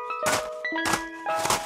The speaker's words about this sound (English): Who wants ice cream? Oh, hey, the ice cream truck is back. Now I can get some ice cream to eat.